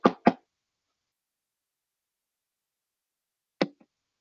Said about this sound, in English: Jesus said, I stand at the door. Right now, Jesus is at the door, brothers and sisters. Jesus is at the door knocking. Let me in.